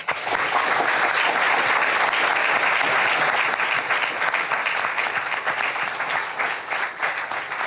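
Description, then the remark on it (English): A large audience applauds steadily throughout, a dense, continuous roar of many hands clapping, holding at a loud level for the full duration with no voices breaking through. “Let's give everybody, the conservatives and the libertarians, another round of applause.”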